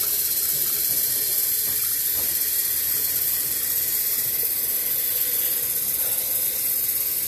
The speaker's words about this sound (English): Four score and 7 years from now, the teapot will be full of water.